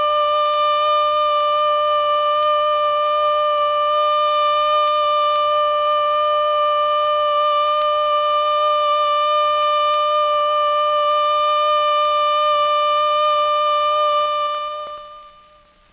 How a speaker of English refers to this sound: First, learn the warning signals. The alert signal is a steady blast on a siren or fire horn of 3 to 5 minutes duration. This is how it sounds.